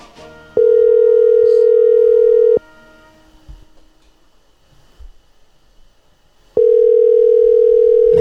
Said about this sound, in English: Better pick up. Your own dad won't even answer your phone call.